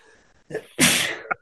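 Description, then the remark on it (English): A single loud sneeze: a short sharp inhale, then a bright explosive burst lasting about half a second, followed by a brief little catch at the end. “Bless you. The sneeze got you.”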